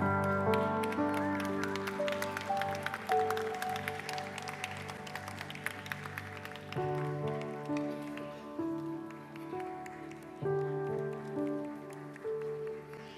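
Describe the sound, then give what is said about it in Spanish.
A group at a church service applauds the children with steady, overlapping clapping while held musical chords play underneath; the clapping thins out partway through as the music carries on. “Ahora sí creo que les podemos dar un aplauso.”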